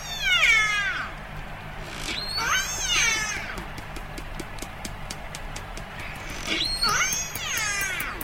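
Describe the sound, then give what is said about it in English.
Three wavering, harmonic orca calls, family-specific biphonic calls in which one animal makes a lower tone and a simultaneous higher whistle at the same time, rise and fall over steady clicking and a low underwater rumble. No one speaks. “Now, this is a family-specific call, and it's a biphonic call.”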